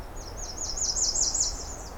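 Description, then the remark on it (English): A series of high, thin, repeated bird notes rises and falls in a steady rhythm, sounding faint and somewhat distant over a low background rumble, like Nashville warblers singing far off. “I'm hearing some Nashville warblers a little further off.”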